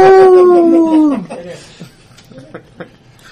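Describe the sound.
During a role-playing game, a person loudly imitates a creature's howl after it is hit by a crushing despair spell: one sustained, wavering cry about a second long that slides downward in pitch, followed by quieter scattered vocal sounds and soft clicks.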